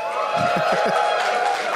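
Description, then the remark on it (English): A live audience at the Pemberton Music Festival in Pemberton, B.C., Canada claps and yells together in a dense, steady burst of cheering for a couple of seconds, with a few heavier thumps underneath. “I wasn't expecting it to be that good of a version of that, because how many people here have never applaud or yell out if you've never heard the Doug Loves Movies podcast?”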